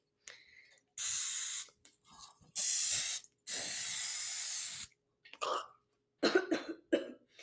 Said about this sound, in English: Oh, I was supposed to spray the pan. Okay, that's fine, because I haven't put it in. Spraying ASMR.